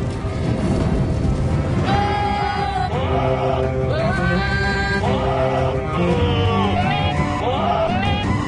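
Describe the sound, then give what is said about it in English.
Goats bleat in a string of wavering, pitched cries, arranged like a melody over loud, dense orchestral music that plays continuously, in an internet clip of goats doing the Game of Thrones. No one speaks. “Oh yeah, this was, I think, goats doing the Game of Thrones.”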